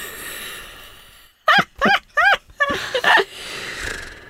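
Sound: dog barking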